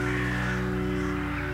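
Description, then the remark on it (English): Birds resting on tall rocks beside the ocean call, their harsh cries blended into a continuous wash of sound with a steady, humming tonal drone underneath; moderately loud and unbroken throughout, with no speech. “Now, close your eyes and listen to the sound of the birds resting on the tall rocks beside the ocean.”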